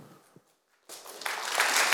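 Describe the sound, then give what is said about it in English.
After a brief near-silent pause, an audience breaks into clapping that quickly swells into dense, crackling applause, growing louder and fuller toward the end. “y'all clapping. Okay, cool.”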